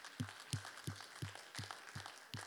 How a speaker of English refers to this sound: Come on, you can clap one more time.